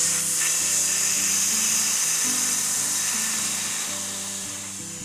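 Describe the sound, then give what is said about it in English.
A voice hisses like a snake in one long, slow, steady exhale during a breathing exercise, lasting about five seconds and fading slightly at the end, over soft low tones that shift underneath. “And breathe out slowly as you hiss like a snake.”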